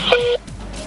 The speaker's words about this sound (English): I think we have what it sounds like when you call this 800 number for questions. You reach Kobe. I'm taking all questions about Mamba mentality. Leave them at the beep with your name and handle.